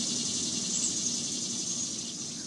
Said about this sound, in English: That's that summer cicada.